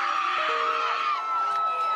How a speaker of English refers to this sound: You got this out of control. Chaotic mob.